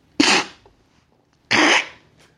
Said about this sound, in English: Hey, sorry, man. That fucking cough took me off my fucking legs for a second.